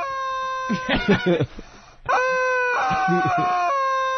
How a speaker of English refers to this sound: Who got this? That they still make rubber chickens?